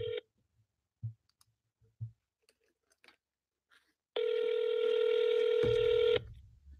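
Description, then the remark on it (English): A phone call to a business partner being placed: a brief beep and a few soft button clicks, then a steady electronic ringing tone about two seconds long that cuts off with a low rumble. No one speaks. “So I don't know if I'm calling them or they calling me.”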